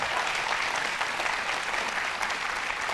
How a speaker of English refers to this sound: If you are a volunteer fireman or a firefighter in the house, just hold your hand up real high, real quick. Amen. Y'all give them a hand clap tonight. Amen.